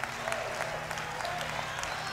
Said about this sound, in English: They're clapping for this.